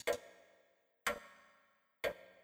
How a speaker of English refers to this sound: so still they could hear the whirring movements of the grandfather's clock out in the hall.